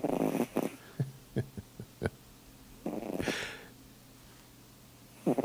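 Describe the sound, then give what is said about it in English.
A cat named Charlie snoring: soft raspy breaths in and out, with a few short snuffly snorts and clicks between them, quiet and irregular with no voices. “This is the same cat, but snoring.”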